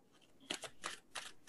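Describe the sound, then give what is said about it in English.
Tarot cards being shuffled in a series of quick, crisp riffling bursts, about five rustling swishes at an uneven pace, fairly soft, with no voices. “I'm going to start shuffling now.”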